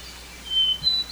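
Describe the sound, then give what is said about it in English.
Two hermit thrushes sing a duet in the woods of Maine's 100-mile wilderness: clear, sustained whistled notes at slightly different pitches, one after another, each song starting with a clear single note and spiralling up higher. The notes are fairly soft over a quiet woodland background with no talking. “I'm in Maine's 100-mile wilderness, listening to a duet between two hermit thrushes.”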